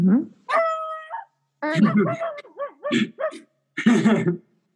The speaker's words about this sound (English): Is that your puppy? Yeah, my puppy. Yeah. He barks. We're outside.